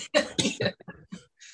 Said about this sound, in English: So I keep coughing because I haven't talked this much for a long time.